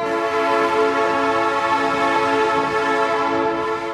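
A British commuter train hums past with a loud, steady electric whine of layered tones, unbroken for several seconds before easing off slightly at the end.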